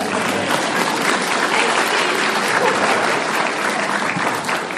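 An audience applauds steadily for several seconds, a dense, even wash of many hands clapping at a consistent loud level with no voices standing out.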